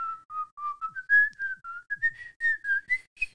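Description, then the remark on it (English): A person whistles a snake-charmer style melody to try to charm a snake: a string of short, clear tonal notes that wind up and down in pitch, with no talking. “What if I snake charm it? Impossible. I'm going to do it.”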